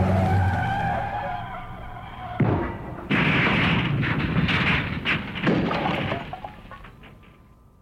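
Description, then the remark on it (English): A car engine roars, then loud tires skid and screech in long harsh bursts, with rough scraping noise swelling and fading over several seconds, intense, as the car's tires are hit by gunfire during a chase. “They hit the tires. Brake, damn it. Too late. Jump!”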